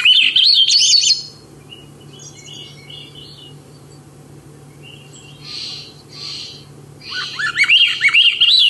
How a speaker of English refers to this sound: Yeah, this is the Swainson's thrush, and what a beautiful song. It's a song that you only hear typically when you're hiking up a mountain. It's a species that nests up in the spruce fir forests